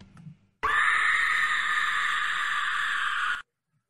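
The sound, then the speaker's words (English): A pig's scream, shrill and piercing, held loud and steady for about three seconds before cutting off abruptly, with nothing else around it. “The pork scream never gets old.”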